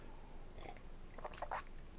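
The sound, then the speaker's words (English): Someone drinking water, with a few quiet wet gulps and swallowing clicks in an uneven cluster over a faint steady background, no talking. “As I'm drinking the water, I'm looking at the notes about intermittent fasting.”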